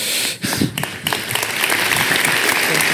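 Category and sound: crowd, audience applause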